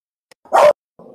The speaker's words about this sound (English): And dogs barking, they seem very upset.